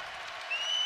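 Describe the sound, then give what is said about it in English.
A large basketball arena crowd rises to its feet, cheering and applauding in a dense, steady roar in the final minute of a Rutgers game against the Gophers, with a sharp whistle cutting in halfway through and rising slightly in intensity. “The crowd to their feet.”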